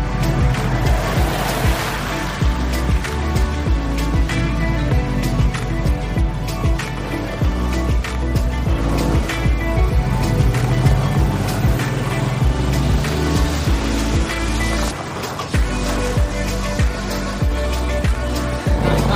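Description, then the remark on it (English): A heavy four-wheel-drive truck engine roars and strains continuously, its deep rumble surging and easing as one truck tries to pull another out, with gritty rushing noise layered over the steady low drone. “And a bunch of trucks and four-wheel drive. One is trying to get the other one out.”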